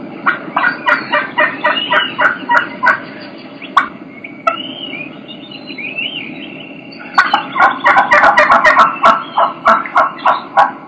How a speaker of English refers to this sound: You can hear two hens doing the exact same vocalization, but you're gonna be able to tell that they're two different hens. One's high, one's got a little bit of different voice than the other.